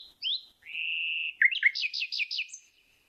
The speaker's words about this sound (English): And that's the sound that, among all the sounds that male nightingales make, this is the one the females like the most. And it's going, bee. It's like, bee. It's this one sound very hard for people to make.